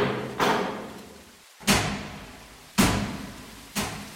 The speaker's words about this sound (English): This is the door to the vault.